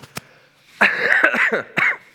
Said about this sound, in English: It doesn't matter if you cough, it's coming through the speakers. I've been a little bit under the weather, so hopefully I won't have a coughing fit while I'm up here, but excuse me.